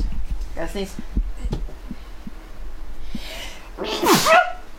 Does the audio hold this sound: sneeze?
yes